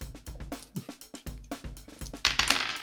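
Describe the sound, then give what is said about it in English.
Dice clatter in a quick, irregular run of sharp little clicks and knocks, ending in a brighter, rougher skitter as they tumble to a stop, landing on snake eyes. No one speaks. “Oh, well, I got snake eyes, so.”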